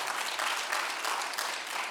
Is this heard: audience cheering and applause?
yes